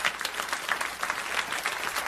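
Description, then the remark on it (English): A church audience claps hands together in steady, dense applause after the preacher asks those who agree with his belief in the second coming of Jesus Christ to clap. The many overlapping claps hold an even loudness throughout, with no voices rising above them. “If you agree with that, clap your hands, would you?”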